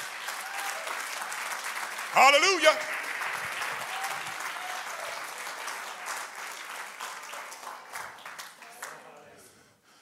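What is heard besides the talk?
audience clapping hands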